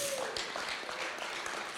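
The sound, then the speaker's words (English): An audience in a church cheers and claps in a steady, dense wash of noise that stays at an even level throughout, with scattered voices mixed in but no clear words. “You might as well cheer because I'm talking about you.”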